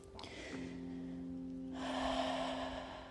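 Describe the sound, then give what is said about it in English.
A deep, audible breath drawn in through the nose and then let out slowly through the mouth in a long, airy exhale, fairly soft, over a faint steady humming tone. “So continue with just the conscious breathing, inhaling through the nose naturally and fully, exhaling through the mouth as a release.”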